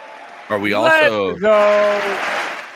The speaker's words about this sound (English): Hit the round of applause, Tony. Give that man a hand.